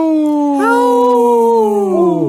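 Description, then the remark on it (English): A single sustained howl from a human voice imitating a wolf, loud and steady with rich harmonics, stepping up in pitch early on, holding, then sliding down at the end. “Howl!”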